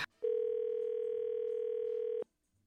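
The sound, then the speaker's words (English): A single steady ringback tone of an outgoing telephone call sounds for about two seconds, clear and fairly loud, like one ring heard down a phone line, with no talking around it. “Well, we're going to call him up, get him on the phone,”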